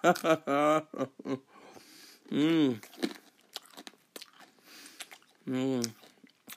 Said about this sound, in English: I know you're probably hating the crunching.